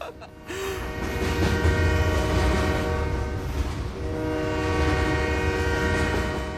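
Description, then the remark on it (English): A loud, sustained train horn blares with steady harmonic tones over the low rumble of a rolling train, holding for several seconds with a brief dip midway. “Yeah, this is The Pain Train. So, without further ado, welcome aboard. All aboard!”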